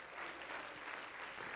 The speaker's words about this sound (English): Clap your hands to the Lord all over the building in Jesus' name.